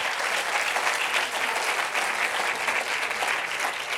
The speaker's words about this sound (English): Give a clap offering to the Lord if you believe that today.